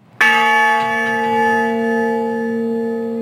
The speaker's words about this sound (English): It is the honor bell, and we talked about it on Memorial Day with the veteran who created it. He wanted to do more to honor service members when they passed away.